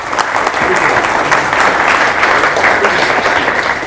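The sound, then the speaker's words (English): A live audience applauds steadily, a dense wash of many hands clapping at once, loud and even for the full few seconds without letting up or fading. “All right, can we clap on?”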